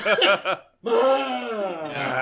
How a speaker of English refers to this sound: I accidentally yawn with my booming voice.